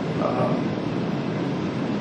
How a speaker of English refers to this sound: Car crossing a train track with an oncoming train.